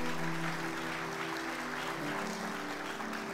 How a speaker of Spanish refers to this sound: Dale un aplauso bien fuerte a él. Déselo a él, hermano, ese aplauso.